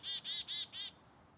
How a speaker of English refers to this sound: Okay, there were some black-capped chickadees. And an American crow. But mostly nothing.